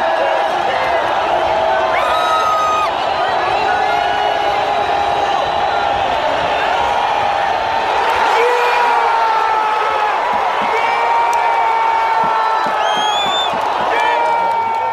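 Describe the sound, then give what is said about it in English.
A stadium crowd in the Black Hole roars in sustained, loud cheering as a field goal is blocked, with piercing whistles and whoops rising repeatedly above the dense wall of voices for the whole stretch. “So here is, this is from the Black Hole. This is when we block the field goal.”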